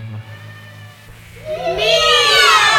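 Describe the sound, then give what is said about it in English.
A few seconds of quiet low hum, then several overlapping cat meows rise in together, loud, their drawn-out wavering cries layering into a chorus. “Meow! Said old Tom again. Yes, just like that.”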